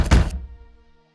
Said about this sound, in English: there's a heavy knocking at your door.